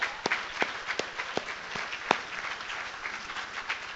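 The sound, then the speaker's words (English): A church crowd applauds steadily for the Tyvee girls basketball team reaching the state tournament, with dense overlapping claps forming a continuous wash of sound and a few sharper individual claps standing out, holding at an even level throughout. “That is something to clap for”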